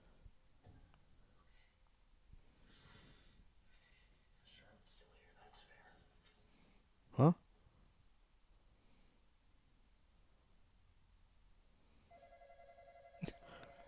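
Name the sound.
telephone ringing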